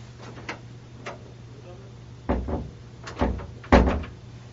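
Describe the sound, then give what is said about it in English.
A locked door is tried and rattled, with a few faint knocks followed by three louder clunks of the latch and handle in quick succession, the door never opening. “The door can't open from this side.”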